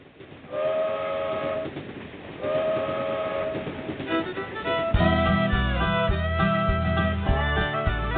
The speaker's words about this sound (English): I say the bluegrass trains are coming from Beaverdale down to Alabama. The bluegrass trains are coming. Bluegrass trains are coming. Long, long train running.